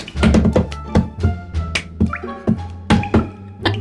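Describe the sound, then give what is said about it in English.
In a prison cell, a cup bangs repeatedly against a hard surface, about twice a second, each knock sharp with a brief hollow ring, continuing steadily without any talking. “Sully has found himself a cup and he's just like...”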